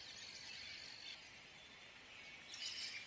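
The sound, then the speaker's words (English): A dense chorus of small birds that are being fed chirping and calling outdoors, high twittering layered continuously with bursts of louder calls near the end, no voices present. “That's what it's going to sound like outside with all of our birds that we're feeding.”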